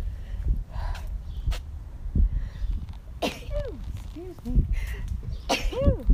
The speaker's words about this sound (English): And so, oh, I gotta sneeze.